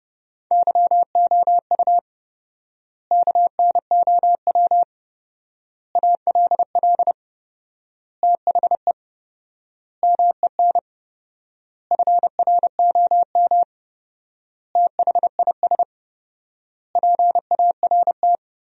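Fast Morse code at 30 words per minute, sending sentences built from the top 300 words with 4x word spacing, a single steady mid-pitched tone keyed in quick dits and dahs, sent in short bursts separated by long, even pauses, with no voices.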